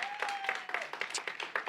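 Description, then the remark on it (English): An audience applauds the band, many hands clapping in a dense, steady wash that holds at an even loudness throughout, with a thin, faint tone sliding slightly downward during the first half. “Didn't the band do a great job? Can you give them a round of applause?”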